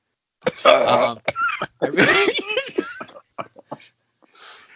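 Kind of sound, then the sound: human body sound, hard cough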